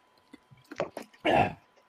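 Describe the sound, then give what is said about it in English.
Someone sipping a drink: a few soft wet mouth clicks and short slurps, then one louder, longer sip lasting about a third of a second. No talking. “Let me sip my drink.”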